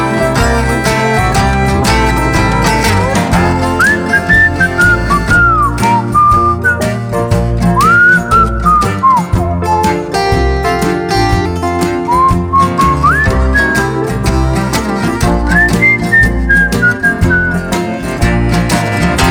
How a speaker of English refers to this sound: Just whistling off in the pines.